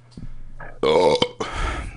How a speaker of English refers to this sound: Burp there.